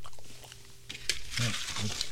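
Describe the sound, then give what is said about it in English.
Someone chews a Pop-Tart with soft, crackly crunches and wet mouth noises over about two seconds, while a muffled voice murmurs partway through. “Because you chew like a cow.”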